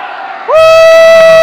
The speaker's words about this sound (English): Thank you so much. That was the best cheer I've heard in a long time.